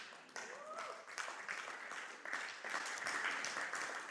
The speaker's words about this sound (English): Oh, come on, we got to clap more excited than that.